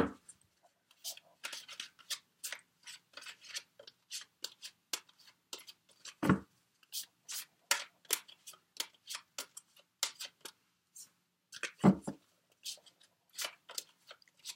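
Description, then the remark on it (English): Crisp clicks and papery snaps repeat in quick irregular bursts as a deck of tarot cards is shuffled, with two louder slaps partway through. No one speaks. “Sorry, I'm just taking in the energies for you while I shuffle, Aries.”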